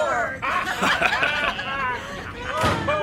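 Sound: door slamming shut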